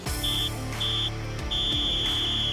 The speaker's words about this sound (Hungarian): A hármas sípszó jelzi a meccs és egyben a műsor végét.